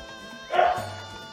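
dog barking

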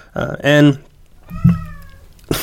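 cat meowing agitatedly

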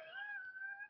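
cat meowing

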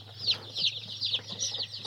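chickens clucking

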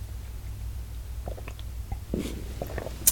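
sipping tea

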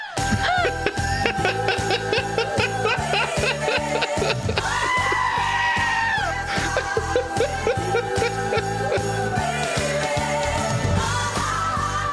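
goats bleating

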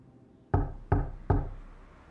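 knocking

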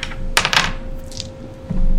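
dice being rolled

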